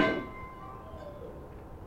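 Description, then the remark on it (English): A crystal basket, knocked over by a girl, breaks with one sharp crash, followed by bright, bell-like glassy ringing that slowly fades over the next second or so. No one speaks. “just knocked over my crystal basket. About to get her fanny spanked, and she broke it.”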